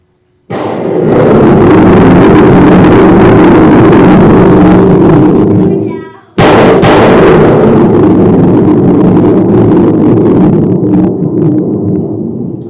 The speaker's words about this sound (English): Imagine being before the throne room of God. That is what you hear, but that is where the light, our sound effects of godly thunder can only go so far. That should startle you a little bit.